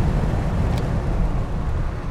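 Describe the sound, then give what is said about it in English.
An air conditioner runs with a steady, low droning rumble and a faint hiss above it, unchanging in level throughout, with no voices. “Sorry, I'll get rid of that noise and turn the air conditioner.”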